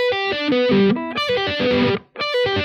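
A dry electric guitar picks a quick arpeggio with a slightly distorted tone. Notes step up and down in a steady pattern, stopping briefly without any echo or reverb tail before starting again.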